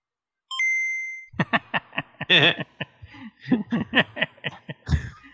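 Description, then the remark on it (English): A game console startup chime, played with no game inserted, rings out once, a bright sustained electronic tone, then fades as someone bursts into loud, choppy laughter. “Maybe I can get it to do the chime on the mic.”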